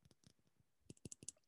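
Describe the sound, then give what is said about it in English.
Quiet clicks and taps of a small nail polish bottle being handled before painting nails, irregular at first, then a quick cluster of sharper knocks near the end. No one speaks. “So ASMR on the nail polish.”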